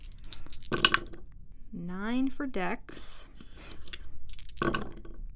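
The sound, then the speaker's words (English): Dice clatter in two short, clicky bursts, one near the start and one near the end, with a person speaking in between. “Maybe the random encounter note should just be dice rolling.”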